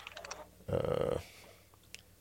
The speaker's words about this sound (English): But whoever's eating or crunching or whatever in the background, it's very annoying.